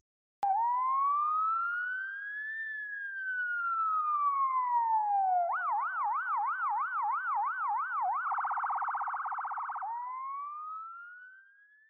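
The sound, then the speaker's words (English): An electronic siren plays alone, starting with slow rising and falling wails, then switching to a fast warbling yelp and a rapid hi-lo trill before sweeping upward again. “let's try a story siren. Here it comes.”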